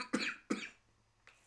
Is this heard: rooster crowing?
no